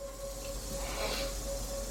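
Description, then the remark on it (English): A steady, dry buzzing hiss of rattlesnakes rattling in the background of a YouTube video where people gather around a cage of PNG taipans and water cobras, low and continuous throughout with a faint humming tone underneath and no voices. “And you can hear rattlesnakes in the background.”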